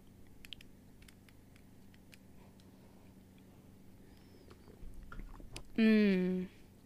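A few quiet clicks and gulps as a shot of liquor is swallowed, followed by a loud, strained vocal 'ahh' that drops in pitch and cuts off.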